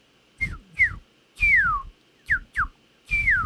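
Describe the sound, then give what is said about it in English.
A person whistles an imitation of a northern cardinal call: six clear, downward-slurring notes in uneven bursts, some short and sharp, others longer sweeping slides, with breathy noise under each. “Right, so she said, yeah, that's a northern cardinal.”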